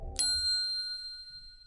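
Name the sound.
bell ding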